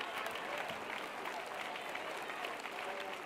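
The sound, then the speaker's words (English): A church audience claps their hands to magnify the Lord during a sermon, a steady, dense wash of applause, many overlapping claps blending into a continuous bright patter at an even, moderate loudness with faint voices mixed in. “Why don't you clap your hands and magnify the Lord?”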